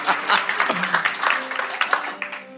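audience applause

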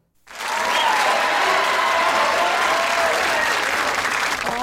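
studio audience applause

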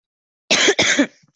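person coughing

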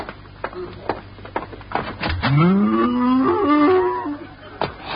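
cow mooing

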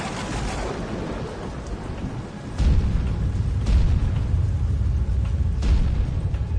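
thunder rumbling

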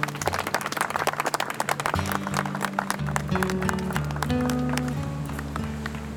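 audience clapping

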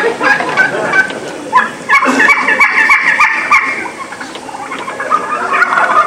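wild turkey hen calling

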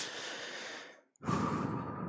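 heavy breathing

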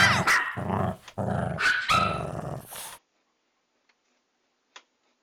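dog growling

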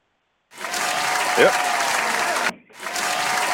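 applause sound effect

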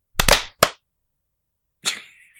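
hand clap

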